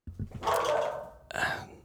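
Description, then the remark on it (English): A dog barks twice in quick succession, a sharp bark, then a brief pause and a second rougher bark, with no one talking over it. “My dogs are barking.”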